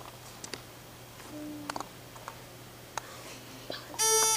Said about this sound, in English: you buzzed in first.